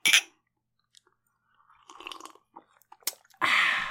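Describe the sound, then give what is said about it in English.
A bright clink of glasses in a toast opens, followed by soft sips and gulps of blue milk, a few small knocks, and a loud breathy rush at the end. No one speaks. “This episode, we are drinking blue milk. Cheers.”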